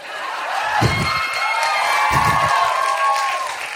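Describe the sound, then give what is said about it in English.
Steady, loud applause from a live show audience fills the whole stretch, a dense rush of clapping mixed with scattered cheers, broken by two dull low thumps a little over a second apart as waters are dropped backstage. “That applause you gave me fucking cured a disease that was forming in my body.”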